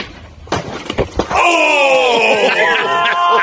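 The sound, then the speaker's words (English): A man lets out a long, loud, strained scream of pain after being hit in the groin, sustained and slowly falling in pitch, preceded by a few sharp impacts and scuffling. “And the scream is good.”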